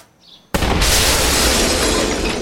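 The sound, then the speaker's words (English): A sudden, loud cannon blast, set off by a fuse that was not extinguished, erupts after a brief quiet hiss, followed by a sustained roaring, crackling rumble of debris that fills the remaining seconds at full intensity. “You didn't extinguish the fuse on that cannon, did you, Jenkins?”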